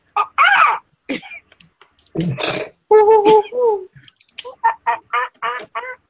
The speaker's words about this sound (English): The sounds of the forest return.